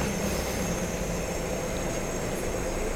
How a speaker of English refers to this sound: We've got the 343 bus going over there to my right, and it's completely empty.